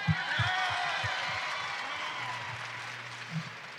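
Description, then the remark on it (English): A seated audience at an Astros baseball event applauds itself, breaking into sustained applause: a dense wash of clapping that holds steady for several seconds, with cheers mixed in and a low hum beneath. “You can give yourself a round of applause.”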